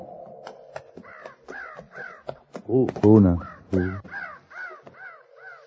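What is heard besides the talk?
crows cawing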